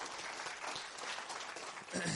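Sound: round of applause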